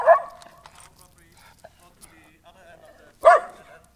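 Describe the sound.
A dog named Buddy, out on a walk, lets out two sharp, loud barks at a neighbor, one right at the start and another a few seconds later, with faint voices murmuring in the quiet stretch between them.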